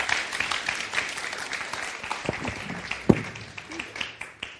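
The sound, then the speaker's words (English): A crowd applauds steadily with dense, overlapping claps filling the whole stretch, a few sharper individual claps standing out, while faint voices mingle underneath. “You guys, round of applause for”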